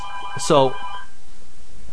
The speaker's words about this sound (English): Dude, does the phone have to ring while I'm doing my journal? I'm just going to talk through this.